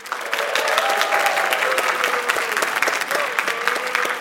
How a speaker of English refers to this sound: I would describe that as a moderately enthusiastic applause with one very fervent boo.